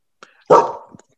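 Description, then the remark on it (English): A single sharp bark from a pet dog bursts out loudly, trailing off quickly, with a couple of faint clicks or small noises just before and after it. “Do you hear my dog?”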